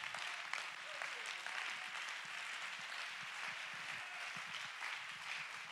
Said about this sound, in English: Somebody clap your hands and give God the praise.